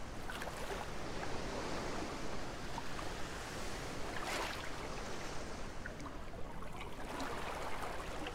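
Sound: ocean waves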